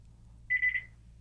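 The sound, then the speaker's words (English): A landline telephone in an apartment in New York rings once: a short, high electronic trill of three quick pulses, fairly loud, over a low steady hum with no one talking. “It's my dad's apartment has phones in every fucking house.”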